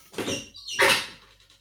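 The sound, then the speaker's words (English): A squeaky door creaks open with a drawn-out, high-pitched squeal in two strained bursts, fairly loud, trailing off into quiet. “That was my door. It's very squeaky.”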